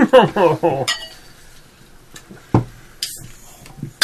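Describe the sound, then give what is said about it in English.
A short burst of voice opens, then ceramic cups clink and knock a few times at irregular intervals, sharp bright taps amid quiet handling noise as coffee is poured. “I need caffeine. Oh, okay. I'm like, why are you cursing my name for pouring you one?”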